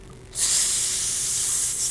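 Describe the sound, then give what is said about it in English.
A voice imitates a snake with a single sustained, sharp hiss that starts abruptly and holds steady and loud for well over a second, with no talking alongside. “I'm a snake.”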